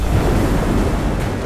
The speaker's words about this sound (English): The priest was cut off by a deep boom of thunder from the clouds overhead.